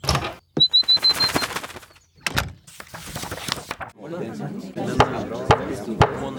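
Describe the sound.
A small bird gives a quick run of high, thin chirps near the start, followed by knocks, clatter and muffled voices in the background.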